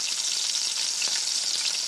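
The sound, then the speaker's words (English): Food deep frying in hot oil, a steady sizzling hiss dotted with sharp crackles and pops throughout, with no voices. “And if you think about it, it makes sense because fish and chips and sweet and sour pork are both deep fried foods.”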